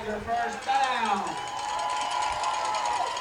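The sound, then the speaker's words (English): A large football stadium crowd roars and cheers after a Tiger first down in a steady, sustained wash of noise, with a few louder voices rising above it early on before the roar settles into a constant din. “Tiger first down. Crowd's in it.”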